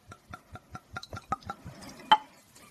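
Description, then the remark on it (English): A dark-coloured 17-year-old drink glugs out of a bottle in a quick, steady rhythm of hollow pulses that blur into a trickle, followed by a single bright glassy clink. “We're going to pour.”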